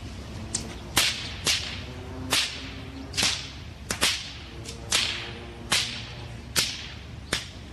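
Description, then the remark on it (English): Two men crack bullwhips in a downtown park on the Truckee River: sharp cracks ring out again and again, roughly one per second, some landing close together, loud against a faint outdoor background with no one speaking. “It shows a couple of guys with bullwhips cracking them in a downtown park on the river, just a few blocks upstream from City Hall.”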